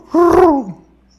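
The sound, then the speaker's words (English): A person imitates an owl with one fairly loud hoot lasting about half a second, its pitch sliding downward before fading into quiet. “They got owls in the day. Here they got owls in the day.”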